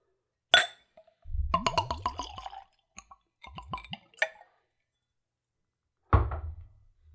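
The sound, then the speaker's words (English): A glass clinks, then a spirit gurgles from a bottle in two short glugging pours into a tasting glass with a wide bowl and pinched top, moderately loud, ending with another clink as the glass or bottle is set down. “So here's a pour.”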